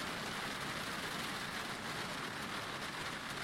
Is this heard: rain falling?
yes